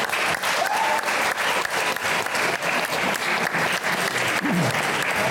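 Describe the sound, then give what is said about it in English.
Sustained audience applause at the Science Museum, a dense, steady patter of many hands clapping for several seconds at a strong, even level, with faint voices and a brief whoop mixed in. “Applause, everyone.”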